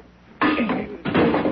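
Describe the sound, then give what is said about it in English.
Two loud, harsh bursts of banging and splintering as a door is struck and knocked loose, the second following right after the first, with no voices. “One more tap and the door will come off.”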